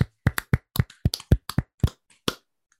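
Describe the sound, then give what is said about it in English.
A short burst of hand clapping, about a dozen sharp claps in a loose, uneven rhythm, as hosts clap together at the end of a bracket crowning the craziest Disney family, ending with a faint tap. “And as we do, at the end of every bracket, we're going to clap it out.”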